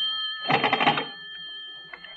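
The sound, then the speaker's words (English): A short burst of an old telephone bell ringing, a rapid metallic rattle lasting about half a second, clear, then quiet with a faint click afterward. “I'd better answer it. It might be the operator.”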